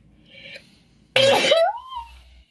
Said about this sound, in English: Good sneeze. I'm sure you'll have a better one soon.